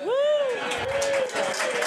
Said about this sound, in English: I'm going to say yes, and we're going to applaud.